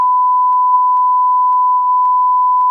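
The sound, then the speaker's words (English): A loud, steady censor bleep holds one unbroken high-pitched tone for about three seconds, completely covering a spoken social security number, with no voices audible. “Beep out my please.”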